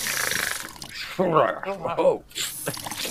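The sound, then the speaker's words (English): Cold water pours and splashes steadily over a person's head, broken in the middle by a sudden startled vocal outburst before the rush of liquid resumes. “What are you doing pouring water all over my head?”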